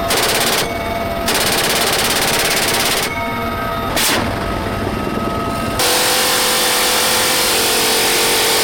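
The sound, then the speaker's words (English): A .50 caliber heavy machine gun fires during Marine live-fire drills on a large base, in loud, sustained bursts with brief pauses between them, each burst a rapid thudding stream of shots, followed by a lingering rumble. “But going through drills on the massive, sprawling base that included even live fire of rockets and the 50 caliber.”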